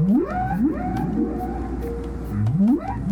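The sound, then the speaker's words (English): Whale song: a few drawn-out, rising tonal cries with rich harmonics, repeating every second or so over a low, rumbling underwater hiss, fairly loud and with no voices. “And messages from the deep, the songs of whales are changing.”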